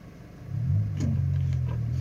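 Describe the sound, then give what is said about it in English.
A car engine idles steadily while waiting at traffic lights, a low continuous rumble that swells slightly after a moment and then holds, with no one speaking. “I'm stuck at traffic lights, if you're wondering.”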